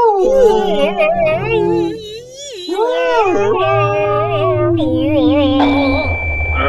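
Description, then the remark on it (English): Whale calls: long, wavering moans and squeals that slide up and down in pitch, layered over a low rumble, loud and continuous with no talking. “More whale noises.”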